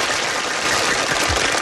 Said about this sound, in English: And we'll want to keep that applause going